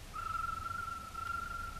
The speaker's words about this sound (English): Jim, there's someone coming. It's Kolo. That's his whistle.